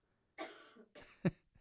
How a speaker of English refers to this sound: Bless you, sweetie. Bless you. Is that a cough or?